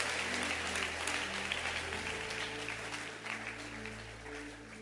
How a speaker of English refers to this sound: I was expecting to hear a loud hand clap.